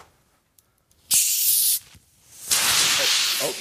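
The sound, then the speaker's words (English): A sealed fizzy seltzer bottle is cracked open beside a computer, spraying it a little, with two loud bursts of hissing gas: a short sharp hiss, a brief pause, then a longer sustained rush of fizzing. A few faint clicks precede it. “I'm hoping I won't ruin the computer, because usually even without shaking the bottle and having it in the fridge for days, it'll still explode out of the bottle.”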